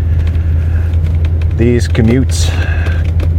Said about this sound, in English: These podcasts come to you from my truck, and they are recorded during my commute to work.